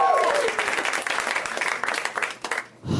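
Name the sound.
audience applause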